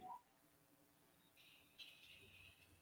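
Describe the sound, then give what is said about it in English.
A bird chirps rapidly and insistently outside in the background, a continuous string of high-pitched calls that grows busier partway through. “I love how you can hear that bird going nuts.”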